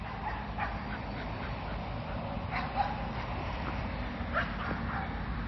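A dog being walked outdoors lets out a few scattered barks and yips as a ute drives past, a steady low rumble; the whole scene is fairly quiet, with no one talking.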